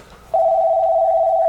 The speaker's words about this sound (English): Oh, man. How do I turn this phone off?